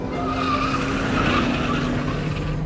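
Racing car tires skid loudly for a few seconds, a steady screeching squeal over a rough engine roar, continuous with no voices.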